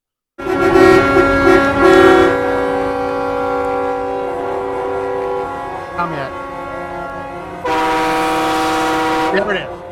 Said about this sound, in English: brought an actual air-powered train horn. And before we start talking about the leftists freaking out over this train horn, I want to let you hear what it sounds like.